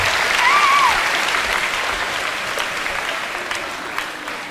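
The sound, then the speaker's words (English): An audience applauds steadily for several seconds, a dense wash of clapping that stays loud throughout, with a brief whistle near the start and a few scattered cheers in the crowd. “Give me a round of applause, guys.”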